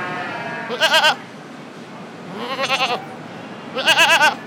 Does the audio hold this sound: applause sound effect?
no